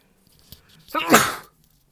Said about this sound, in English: I guess, sorry guys, I gotta sneeze.